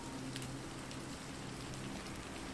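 Steady rain falls during a stormy night in Barbados in a continuous hiss, with soft scattered taps of drops striking a surface and a low rumbling hum underneath. No voices are heard.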